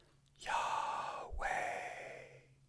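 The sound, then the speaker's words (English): A single person takes one slow, audible breath in, pauses briefly, then lets a long breath out, fairly loud, with no other sounds or talking, showing how the Hebrew name of God, Yahweh, would sound as a breath. “One of my rabbi friends says that if you were to say it, it would sound like a breath.”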